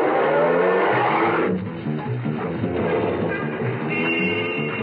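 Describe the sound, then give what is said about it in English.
A taxi's engine revs and pulls away from the corner of 59th Street and Madison Avenue, heading for Penn Station, its loud rumble shifting gears as traffic noise carries on steadily around it, with no voices. “At the corner of Madison, I flagged down a taxi and got in.”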